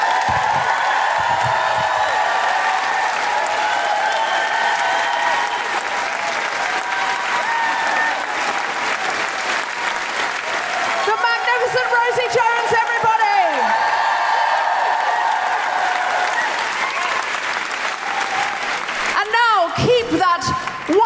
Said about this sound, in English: Warm, guilty feminist Amnesty International applause going for the fantastic Paul Sinha!